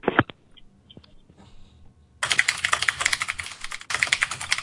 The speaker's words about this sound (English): God damn the typing.